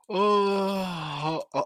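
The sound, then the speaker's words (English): A man lets out a long, drawn-out yawn with a low groaning voice that slowly falls in pitch, ending with a short breathy exhale. “Excuse me for yawning.”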